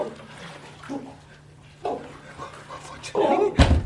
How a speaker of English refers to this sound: Why don't you help me? Put your shoulder to the top panel. Try to break the hinges.